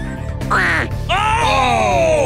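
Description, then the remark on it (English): A person imitates a duck, giving two loud, nasal quacks, a short one followed by a longer drawn-out call that slides downward, with no talking. “How about giving us a duck call again?”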